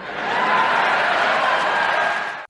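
A crowd applauds in a dense, steady wash of clapping that holds at an even, loud level for about two and a half seconds, then cuts off abruptly. No voices are heard.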